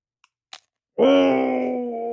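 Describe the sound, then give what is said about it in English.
A faint tick, then one short, crisp crunch as teeth bite into a hard candy-filled sugar cookie right next to the microphone, followed immediately by a long, loud, steady moan of a voice. “my first bite, I'm going to do right here next to the microphone because you have to experience the insanity of this thing.”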